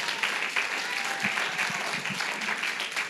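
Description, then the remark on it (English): An audience clapping steadily, a dense, sustained round of applause with no pauses, moderately loud throughout, applauding the event's sound technician. “Man, can we just like give a big round of applause”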